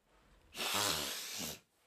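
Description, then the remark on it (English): A single forceful nose blow, a harsh, airy burst lasting about a second with a rough, honking undertone, loud and alone with no talking. “So basically what you do is, first off, you go off, you catch a brook trout, and then you get it home, and then a lot of people will cook the fish whole, and then I need to blow my nose.”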